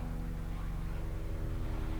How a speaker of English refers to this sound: Military helicopter flying right over my house. Wow. Yeah. That happens a lot for some fucking reason. Okay, it's gone now, for the most part.